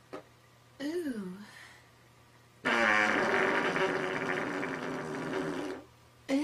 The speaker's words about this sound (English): And then you're kind of going on with dinner, and she lets out this heinous fart that, like, just disgustingly gags the entire room. You're like, I don't think this is it.